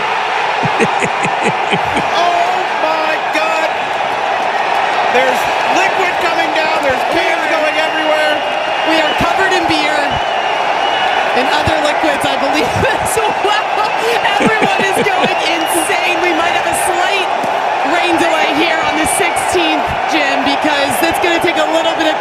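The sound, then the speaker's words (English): A huge, drunk crowd of about 1,000 golf fans in a viewing gallery roars and cheers without letup for over twenty seconds after golfer Sam Ryder's hole in one. It is loud and thick with shouting voices, whoops and scattered sharp thuds and bangs as beer cans and cups are thrown. “He crushes a ball, hole in one, in front of 1,000 people. This is the viewing gallery of all viewing galleries. People are hammered here, and just listen.”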